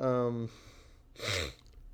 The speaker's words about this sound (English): I'm sorry for the sniffles. I don't know why I'm sniffling so much. That's totally rude and disgusting. I apologize.